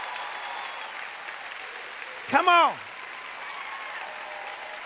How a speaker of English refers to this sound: Somebody clap like your comeback is on its way.